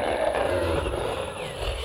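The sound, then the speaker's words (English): A person roars in a deep, growling voice, imitating a monster, a sustained rough bellow lasting under two seconds, fairly loud. “Yeah, so it roars.”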